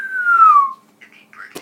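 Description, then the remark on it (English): A voice imitates a big bird laser being shot, with one long, whistle-like tone sliding steadily downward in pitch, then a few brief, softer warbling sounds and a sharp click at the end. “I'm shooting laser. Big bird laser.”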